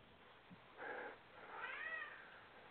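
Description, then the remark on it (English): A cat meows twice, a short call followed by a longer, wavering one, both fairly quiet against a faint background hiss with no talking. “So, feed the cat, somebody.”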